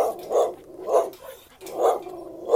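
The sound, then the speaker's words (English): A dog behind a fence barks repeatedly in a steady rhythm, about four sharp, mid-pitched barks spaced roughly half a second apart, moderately loud, with no talking over them. “So, there's a doggy behind a fence. Yeah. But here's him. Ooh. Good barks.”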